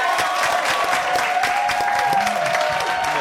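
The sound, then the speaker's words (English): An audience bursts into steady, loud applause, dense clapping filling the whole stretch, with a few whoops and a rising whistle-like cheer riding over it. “Clap it one time”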